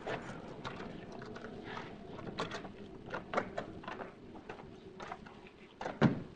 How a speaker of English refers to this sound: Opening the door, he entered the hallway.